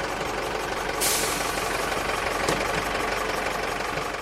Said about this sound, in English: Outside the leisure centre, school buses from around Leash are pulling up.